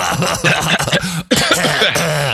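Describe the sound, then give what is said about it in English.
A couple of loud coughs mixed with throat clearing, with a short gap between the bursts and no other sounds. “Did you hear it? What, the telltale cough for a lie?”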